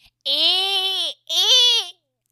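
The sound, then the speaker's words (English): A person imitates a dolphin with two loud, high-pitched squealing calls, a long steady one and then a shorter one that wavers and drops in pitch. “that sounded like a dolphin that didn't know it's a dolphin.”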